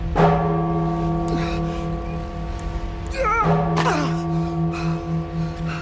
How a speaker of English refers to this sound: Saved by the bell.